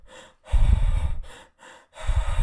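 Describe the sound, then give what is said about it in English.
Audible breathing with no talking: a soft short breath, a long heavy airy rush, then another light intake followed by a second loud breath, like a demonstration of a double inhale. “What's actually happening on the second inhale, when you inhale the second time through the nose or through the mouth?”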